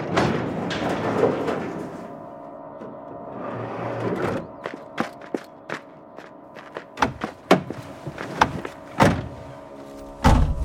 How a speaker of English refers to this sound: I'll get the door open.